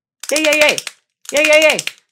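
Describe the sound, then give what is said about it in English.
Two short bursts of quick, rattling hand claps, a round of applause at the close of a video on making dirty keto fried chicken, each about half a second long with a pause between, overlaid by a high, pitched voice cheering "Yay" through both bursts. “Are you clapping for yourself?”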